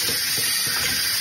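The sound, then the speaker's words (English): A steady, loud fizzing hiss of a whole bottle of champagne foaming over in a SodaStream carbonator bottle filled up to the line, bright and crackly, with a few soft low gurgles beneath and no voices. “Okay, we have an explosion on our hands, all right? So maybe the soda stream is not the place for your champagne.”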